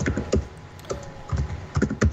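Quick, irregular clacking of keys on a computer keyboard, close by, in short bursts of several strokes with brief pauses between them and no voices.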